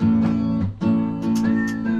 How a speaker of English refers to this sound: Oh, we got the whistles. I like the whistles. They go woo woo.